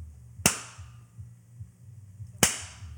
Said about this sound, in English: That's a whip. It's hard to find a whip.